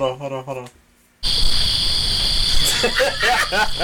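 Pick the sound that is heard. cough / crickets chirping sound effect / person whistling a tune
crickets chirping sound effect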